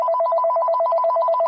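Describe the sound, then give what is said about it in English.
A mobile phone rings in a hospital with a rapid, warbling electronic trill that alternates between two tones, loud, continuing steadily throughout with no voices. “And after some time, my mobile phone rang.”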